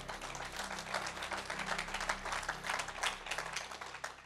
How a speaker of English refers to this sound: Come on. Give Jesus Christ a clap offering now. Come on.